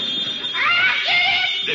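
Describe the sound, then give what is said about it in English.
A telephone rings with a shrill, warbling electronic trill that repeats steadily through the short moment, a faint voice murmuring briefly beneath it. “I wonder if that's somebody else calling about the room.”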